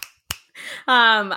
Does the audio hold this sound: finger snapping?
yes